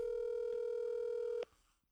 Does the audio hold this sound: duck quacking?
no